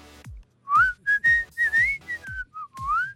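A person whistles a short, lilting tune of about eight clear notes, fairly loud, with a few sliding pitches and brief breaths between phrases.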